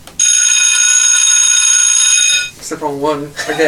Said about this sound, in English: The wrong one again. Any sort of bell will do. Any bell.